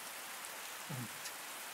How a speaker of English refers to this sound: The skies open up and it begins to downpour, a very heavy rain.